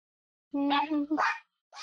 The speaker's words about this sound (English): My dogs disagree apparently with everything you're saying. Now they're barking.